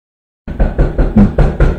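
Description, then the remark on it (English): Loud, heavy knocking on a door: about six or seven forceful thuds in a quick, steady rhythm after a brief silence, deep and booming with no voices. “And at any moment, he could be, the FBI could be at the door knocking on it going, "Let us in.”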